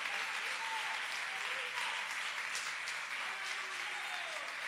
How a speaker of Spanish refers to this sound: Y el que lo crea, le doy un fuerte aplauso al Señor con todo el corazón.